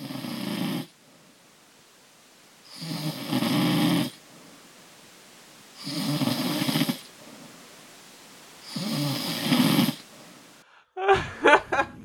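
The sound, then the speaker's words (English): A human snores four loud, rasping times, spaced evenly with quiet breathing gaps between them, followed by a brief voiced sound right at the end. “So we've got one last snore for your... What creature is this?”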